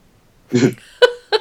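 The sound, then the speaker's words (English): A short voiced sound, then two abrupt, sharp hiccups about a third of a second apart, each a quick gulping catch of breath, fairly loud against an otherwise quiet background. “I had a hiccup in the middle there. I was trying to talk through it.”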